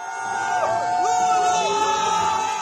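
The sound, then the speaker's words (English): A crowd across a Brazilian city cheers and whoops continuously as Lula pulls ahead of Bolsonaro in the election count around 8 p.m. local time. Overlapping voices and a few sustained high shouts rise above a loud, steady roar of many people. “But at 8 o'clock local time, or a bit before that, Lula crept ahead and you heard quite a few cheers across this city.”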